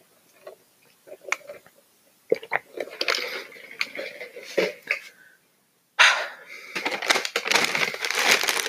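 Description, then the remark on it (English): Crunchy chewing of a salty dry snack mix: irregular sharp crackles and bites at first, then a denser, louder burst of continuous crunching in the second half, with no talking. “I'm going to get some water now because I'm pretty thirsty from these salty, this dry snack mix.”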